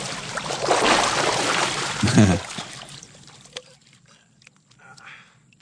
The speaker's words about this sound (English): Get a splishy splash.